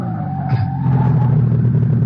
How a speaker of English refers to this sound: An hour later, I'm wheeling my sedan toward the village of Linderheim in Bavaria. Then, as I hit a bumpy stretch of road, I hear something. A muffled groan in the back seat. I slam on the brakes.